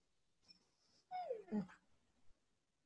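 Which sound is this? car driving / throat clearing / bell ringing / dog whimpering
dog whimpering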